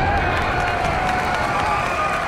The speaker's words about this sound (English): Thunderous applause echoed through the city, like a mountain being split open.